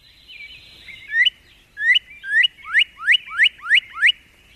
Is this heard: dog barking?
no